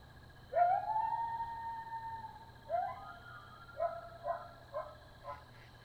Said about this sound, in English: Oh, that was a coyote howling. That's okay, though. I'm not afraid of coyotes, just owls.